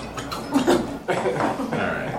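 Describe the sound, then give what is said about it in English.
A quick sneeze bursts out, sharp and breathy, with a brief noisy rush of air amid some muffled vocal sounds. “Bless you.”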